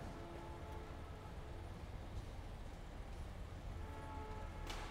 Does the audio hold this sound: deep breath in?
no